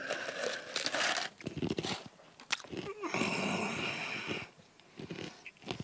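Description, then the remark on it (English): Loud crunching and grinding of ice cubes being chewed, with sharp cracking bursts and brief pauses between bites, heard on its own without talking. “Excuse me, chewing on ice.”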